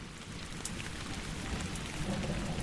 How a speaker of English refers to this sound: Oh, I can do this, actually. That is fresh rain smell.